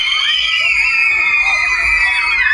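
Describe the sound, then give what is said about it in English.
A group of people scream together as the power goes out during a thunderstorm, a loud, sustained burst of high-pitched overlapping shrieking that carries on steadily for a couple of seconds. “Suddenly, the power goes out from the thunderstorm. Everyone screams.”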